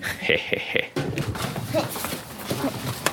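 Quick, rhythmic footsteps thud on the ground outdoors as someone runs off, a few sharp strides at first before blending into a busier background of scuffs and ambient noise.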